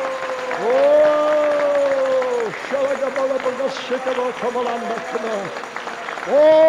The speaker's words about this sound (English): Come on, clap your hands, you trees. Clap your hands. Clap your hands.